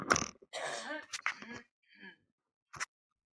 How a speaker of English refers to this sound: Clear my throat.